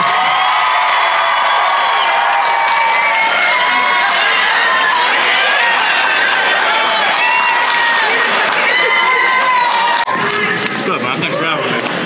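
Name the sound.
audience cheering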